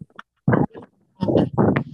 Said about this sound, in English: Windy as shit. Is there a lot of background noise? It's a little bit windy, but go sit in my car. Where you at? I'm sitting outside the gym over here. There's a little like river area and stuff like that.